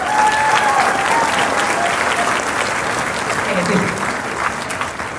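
An audience breaks into a steady round of applause, dense clapping holding loud and even for several seconds with a few whistles and cheers mixed in, then easing slightly toward the end.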